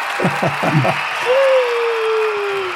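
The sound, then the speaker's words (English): A crowd applauding in a steady, dense wash of clapping throughout. A voice is briefly heard over it at the start, then a sustained, slowly falling tone rises above the applause. “We've got the crowds here, the red carpet.”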